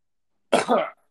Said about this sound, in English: If anybody ever pisses me off from now on, I'm just going to start coughing. Don't fuck with me because I'm coughing all over you.